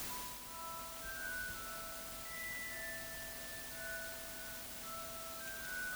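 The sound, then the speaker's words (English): Soft, magical chime tones in the style of the Harry Potter universe play a slow, shimmering melody of sustained high notes over a faint steady drone, with no voices. “Oh, the magical tones of the Harry Potter universe.”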